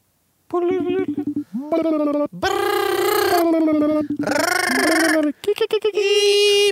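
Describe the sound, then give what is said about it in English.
A voice imitates a ringing phone with a run of loud, sing-song ringing bursts, rising and falling in pitch with short breaks between them, dominant throughout. “Phone's all ringing like.”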